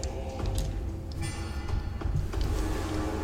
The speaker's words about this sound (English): The source of that, almost like a door with squeaky hinges, that sort of sound, that rhythmic sound, mm-hmm. is suddenly made evident as flying, as improbable as it seems on these large figures with smaller wings